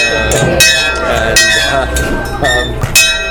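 A school bell rings with a loud, steady metallic tone, struck again and again in a quick, uneven rhythm, its bright overtones sustaining between the clangs.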